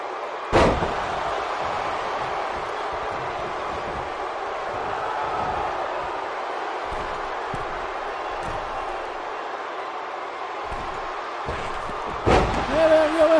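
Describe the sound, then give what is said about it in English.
Two heavy, booming slams onto a wrestling ring mat as Andrade drops off the top and hits a backbreaker on Bam Bam, one near the start and one near the end, over a constant roar of an arena crowd. “Oh, what a devastating backbreaker by Andrade.”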